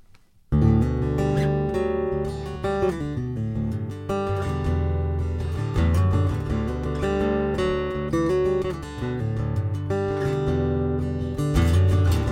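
After a half-second of quiet, a new single kicks in abruptly and plays loud and steady: a full band with a driving rhythmic beat and rich, layered melodic instruments.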